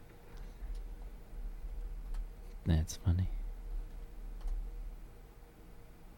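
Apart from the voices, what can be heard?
computer mouse clicking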